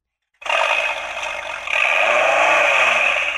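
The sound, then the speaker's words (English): A Viper sports car engine starts up after a brief silence and roars steadily with a raspy, buzzing tone, then revs louder and higher about halfway through and holds there. “That sounds like a Viper. It is a Viper.”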